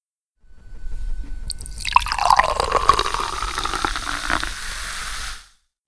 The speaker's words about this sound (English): So, ladies and gentlemen, all that excitement was really just about as much as I could handle, and so I had to ask the butler to pour me a glass of port, and I've already drunk half of it.